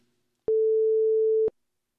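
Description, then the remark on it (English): A telephone line beeps after a hang-up: one steady, mid-pitched tone held for about a second, starting and stopping with a slight click, with silence on either side and no voices. “Why is it beeping?”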